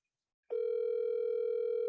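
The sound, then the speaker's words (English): After a brief silence, a steady electronic telephone ringback tone starts and holds unbroken to the end, a clear, fairly loud hum with no voices present. “Yeah, I can hear it ringing.”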